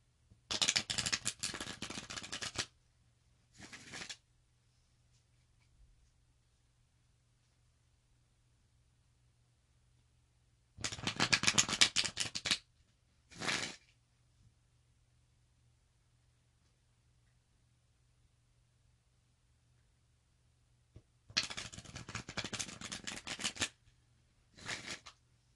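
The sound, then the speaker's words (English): A deck of cards is shuffled three times, each a dense riffling burst of about two seconds followed by a short snap as the cards settle, separated by long quiet pauses with a faint low hum. “So, after I shuffle, I personally like to cut my deck.”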